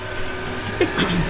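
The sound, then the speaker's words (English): A single sneeze: a quick sharp burst of breath that breaks into a short voiced tail, heard over a steady low background hum. “Bless you.”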